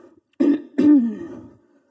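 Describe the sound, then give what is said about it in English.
A father gives one small, deliberate warning cough to his misbehaving sons, a quick two-part throat-clearing burst with a short voiced tail, moderately loud with no talking around it. “Just one little cough.”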